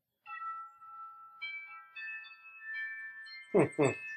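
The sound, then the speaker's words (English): The doorbell at Paul Stanley's front door chimes a slow sequence of clear, ringing tones that overlap and sustain, ending with two short, loud bursts of sound. “Paul Stanley's doorbell.”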